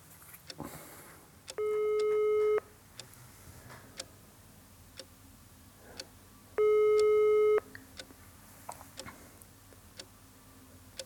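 A telephone ringback tone sounds twice, each steady electronic tone lasting about a second with a long silent gap between, heard over a line with faint clicks and ticks in the background, as a caller places a phone call before it is answered.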